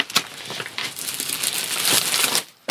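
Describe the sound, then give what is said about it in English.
A pink sheet of paper rustles and crinkles for a couple of seconds as it is tugged out from under an elephant tusk in a cluttered pile, with a sharp scrape at the start and a steady scratchy shuffle after. No voices. “See that pink bit of paper? Where? Under the elephant tusk by the stuffed dodo. This one? Yeah, give it a tug and you can read it.”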